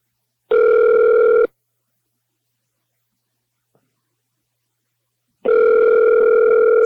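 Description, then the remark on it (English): A telephone line tone after a hang-up: two steady, buzzy mid-pitched tones, each lasting about a second, separated by several seconds of silence, with no talking. “He hung up.”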